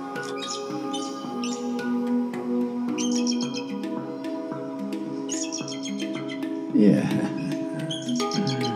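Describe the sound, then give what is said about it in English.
Bursts of high, chittering eagle calls repeat every second or two over a steady, sustained musical drone, with a louder rustling thump near the end. “Eagle, great spirit, the call always feels great.”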